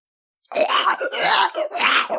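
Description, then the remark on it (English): A voice imitates a creature hacking and retching up cigarettes: three rough, raspy coughing bursts in quick succession, loud, with no words spoken. “And then you see it cough up your cigarettes.”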